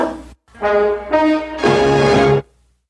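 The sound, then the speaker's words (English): A dog barks four times, loud and drawn-out with a tonal, almost howling quality, the last bark the longest, followed by silence. “Sit. Good dog.”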